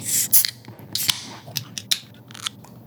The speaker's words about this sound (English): Are you guys ready to crack these open? Let's crack these beers open. I've been thirsty for a while.